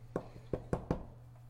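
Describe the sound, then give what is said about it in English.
Four sharp knocks on the door at Kara's, a single knock followed after a short pause by three quicker ones, over a faint steady low hum. “You knock on the door.”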